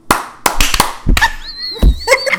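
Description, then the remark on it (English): Sharp hand claps strike in a loose, uneven rhythm, around eight crisp slaps in quick clusters. A thin, high-pitched vocal tone rises over the later claps. “So wait, what's the clap? What are we doing? What's the rhythm?”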